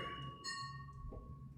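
Drinking glasses clink together in a toast, a bright chime that rings on with a clear, lingering tone over low background murmur, fairly quiet.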